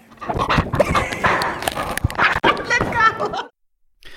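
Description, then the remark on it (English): A dog named Tonka chews on a microphone during a Top Dog Hot Spot Challenge: loud crunching, knocking and snuffling with a few whiny vocal noises, continuing for several seconds before cutting off abruptly. “And I think this was the end of our Top Dog Hot Spot Challenge, because Tomka ate your microphone, so we thought we better stop here.”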